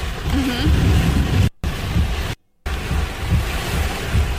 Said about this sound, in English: A big gust of wind coming through. Big gust of wind. We got significant pine tree motion.